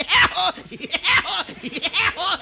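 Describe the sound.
A voice imitates a cartoon woodpecker's laugh: a loud string of rapid, bouncing cackles rising and falling in quick rhythmic bursts, with no other talk around it.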